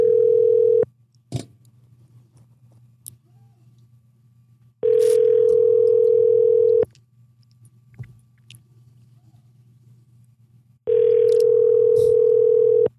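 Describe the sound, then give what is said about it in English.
Ringback tone of an outgoing phone call to a man's business phone number: a loud, steady electronic tone that sounds for about two seconds, then pauses for about four, repeating three times over a faint low hum. “I mean, if he's busy, he's busy, but yeah, we can try to call him.”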